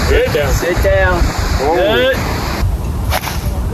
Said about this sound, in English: This is just random clips of me hitting the ball and it not going well at Pebble Beach.